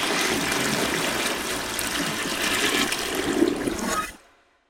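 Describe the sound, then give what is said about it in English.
A toilet flushes with a loud rushing gush of water that churns steadily for about four seconds, then cuts off abruptly into silence. No one speaks. “We're going to flush ourselves back to New York.”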